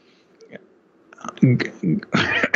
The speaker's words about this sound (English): Pardon me, I don't know why I'm coughing so much today.